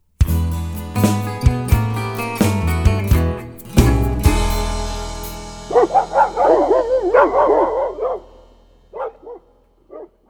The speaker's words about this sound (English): Oh, yeah, I am loving the sounds of them barking dogs today because it means we're going to talk about bourbon for a bit now.